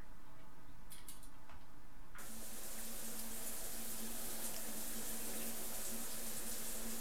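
A shower turns on after a couple of seconds of quiet room tone, then a steady hiss of running water continues with a faint low hum beneath it as a college student takes a shower.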